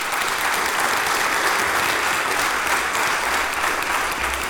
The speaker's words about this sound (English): Give God a hand clap of praise if you believe that.